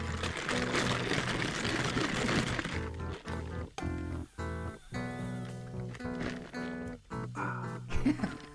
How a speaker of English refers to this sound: Well, I'll take the opportunity to sip my coffee.